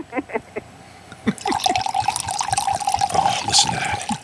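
Wine pours steadily into a glass for about three seconds, a gurgling liquid stream with a sustained ringing tone. It follows brief voices and a few soft clinks at the start.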